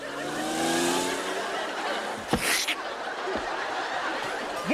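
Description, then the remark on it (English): A sports car engine revs with a rising pitch against a steady roar, followed by a sharp burst partway through as the car drives off, fairly loud throughout. “And then it was, dear listeners, that the grasshopper drove his sports car to Florida and the ant got stepped on.”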